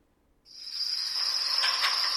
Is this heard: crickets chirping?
yes